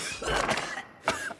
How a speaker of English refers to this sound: Second, a dry cough, like this.